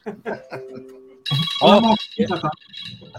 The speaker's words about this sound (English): What is that? That's my work phone.